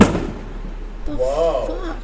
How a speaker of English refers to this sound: Fireworks? For Bastille Day? Or is it, like, for Bastille Day? It's, like, what? It's one day after What Bastille time is it? It is 5:30. Fireworks. Welcome to Parma.